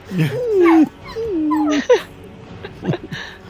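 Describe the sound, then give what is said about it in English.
A person imitates a whimpering puppy: two drawn-out, wavering whines, then a few short, sharp yelps trailing off, with no other talking. “He's a little big for that. Puppy.”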